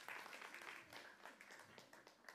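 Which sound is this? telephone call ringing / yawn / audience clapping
audience clapping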